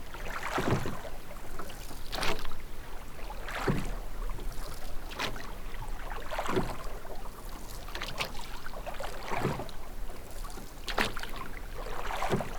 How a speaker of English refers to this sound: Now keep paddling now.